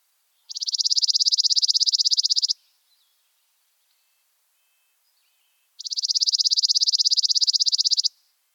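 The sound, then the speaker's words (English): A chipping sparrow sings a dry, rapid, mechanical trill on one pitch, twice, each lasting about two seconds with a pause between. Clear, with no other sounds. “First Chipping, then Junco, and last orange-crowned warbler.”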